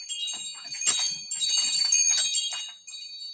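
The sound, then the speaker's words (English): Wind chimes ringing in a steady, shimmering cascade of bright metallic tones, with overlapping strikes that swell and fade over a few seconds, and no voices. “I also have wind chimes.”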